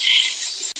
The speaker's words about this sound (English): And the crickets are starting to get a little bit louder.